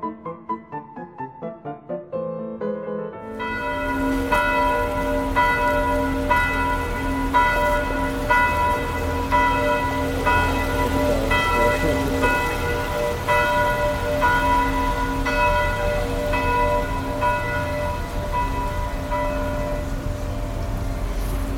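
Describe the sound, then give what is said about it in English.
Church bells of St. Augustine's Church in Vienna, built in 1327, ring out continuously, several bells overlapping in a dense, resonant peal that swells after a few quick opening strikes, heard outdoors over a low rumble of background noise. “The bells.”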